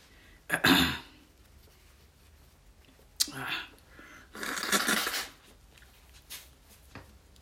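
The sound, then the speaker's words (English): Someone blows their nose in cold weather in three breathy, honking bursts over several seconds, the longest near the end, with quiet pauses between and no talking. “I need to blow my nose.”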